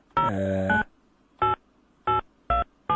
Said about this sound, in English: Okay, Khotato, as you can hear, that's Mefeife Valashia's number, just ringing there. Looks like a German number.